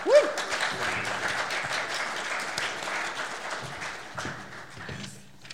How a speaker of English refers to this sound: Everybody give a warm round of applause right now